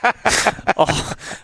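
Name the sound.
person imitating snoring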